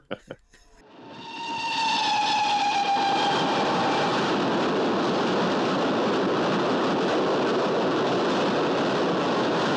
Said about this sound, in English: And the train's coming, yeah. through the desert, and the train arrives at the platform and the audience all start clapping and cheering.